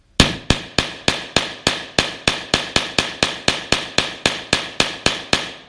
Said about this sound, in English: Now, we've never experienced the firepower of an AR-15 or a similar gun, so we came down to the Double Tap shooting range in Philadelphia